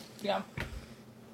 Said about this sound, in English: As I cough.